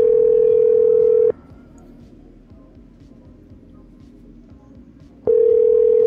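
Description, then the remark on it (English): A loud, steady telephone dial tone hums, cuts off for about four seconds of faint clicking and low background noise, then comes back on just as steadily. “Waddle over to the phone.”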